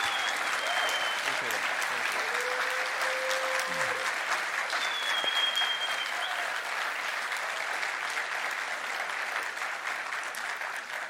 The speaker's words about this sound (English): Come on here. Yeah, give this dude a round of applause.